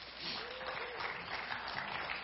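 A crowd claps steadily, a dense, even wash of applause with no pauses, holding at a fairly constant moderate level throughout.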